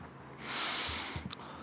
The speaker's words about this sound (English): Bro, you good, bro? We gonna need some words, not just sniffing